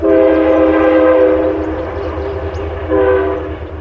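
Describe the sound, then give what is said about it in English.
A Metro North Harlem Line commuter train rumbles past near Pawling, New York, where the Appalachian Trail crosses the tracks, its horn blaring a long, loud blast, then sounding again more briefly near the end over the steady low roar of the cars. “Near Pawling, New York, the Appalachian Trail crosses the train tracks of the Metro North Harlem Line.”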